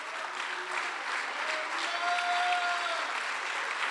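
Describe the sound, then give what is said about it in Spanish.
An audience claps steadily in dense, sustained applause given to Christ, with a faint voice or tone rising briefly through the middle of the ovation. “Aleluya, un aplauso a Cristo.”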